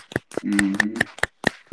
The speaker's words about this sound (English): Let's everybody give each other a hand clap. You did great.